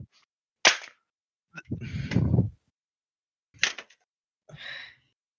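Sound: hand slapping a person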